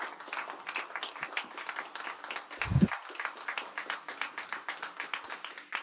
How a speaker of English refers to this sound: With that, a round of applause to Najat on Saliba.